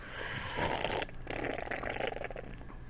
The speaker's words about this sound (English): Well, I'm having to use my not-so-favorite mic tonight. Since I'm having some PC issues, PC bro, so it might sound like my audio might sound a little weird tonight, and my slurping might sound a little condensed. Let's try it again.